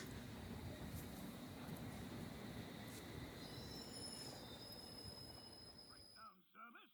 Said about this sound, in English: Oh, God, that rat better move out the way. I can hear a train coming.